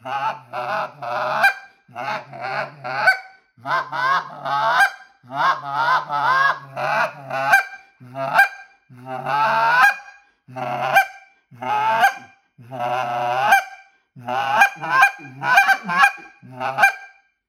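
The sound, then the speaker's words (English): A goose call, the Exit model, blown in a rapid series of sharp honks and clucks, loud, imitating honking geese in quick rhythmic bursts with short pauses between sequences. “GOOSE CALL TIPS! How to: Find your Best Call”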